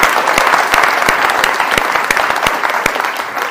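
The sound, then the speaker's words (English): A church crowd claps steadily as a cheer for a group being honoured, dense overlapping handclaps with sharp individual slaps standing out, sustained at a fairly loud level for several seconds with no speech over it. “So can we give these guys a cheer as well?”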